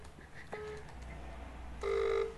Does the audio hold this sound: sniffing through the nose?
no